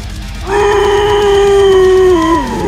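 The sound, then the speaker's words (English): A person lets out one long, loud scream, held steady for about two seconds before it dips and trails off, over a low, steady bed of background music. “I was thinking, what if you put your scream over this?”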